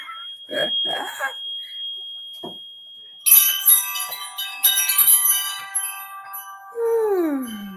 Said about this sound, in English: I have wind chimes all over my house. They just bring in such good energy.